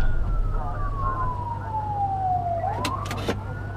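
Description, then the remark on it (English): An ambulance siren at the scene of a bad car wreck wails steadily, its pitch sliding slowly downward before beginning to climb again, heard over a low engine rumble with a few short clattering bursts near the end. “I mean, the ambulance is still here, which is either a good sign or a very bad sign”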